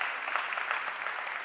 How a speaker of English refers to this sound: And yeah, you can clap for them. That's all good.